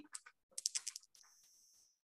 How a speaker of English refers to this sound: Woo. That's actually quite good. I just tossed the dice, man. And this is act under pressure. That's 12. A 12. Okay. Yeah. Maybe I should stop letting you touch my dice.